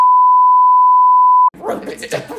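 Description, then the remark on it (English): A loud, steady censor bleep covering an explicit word holds one pitch for about a second and a half, then cuts off abruptly as people start talking. “That might be our first explicit. Uh-oh. Oh. We're gonna have to put a warning. Or he didn't make a beep last week.”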